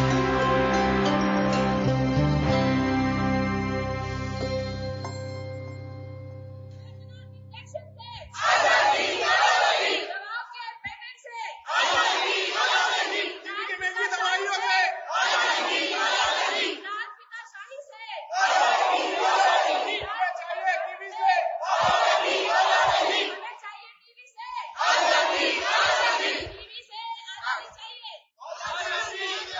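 A fading musical tone gives way to a crowd of TB survivors protesting during the inauguration ceremony of the Union Conference on Lung Health in Hyderabad, loudly chanting slogans in repeated bursts, each shouted phrase separated by brief pauses, continuing steadily for about twenty seconds.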